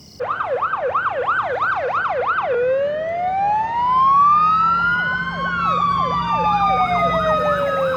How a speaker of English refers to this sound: The next night, high drama, fire trucks in the street